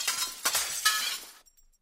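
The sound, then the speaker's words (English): A sound effect of clay jars and glass breaking, for the biblical story of Gideon's men breaking jars and blaring trumpets against the Midianites: a bright, crashing shatter, several sharp impacts in quick succession followed by tinkling debris that fades out, with no voices. “They blared those trumpets, and they also broke jars.”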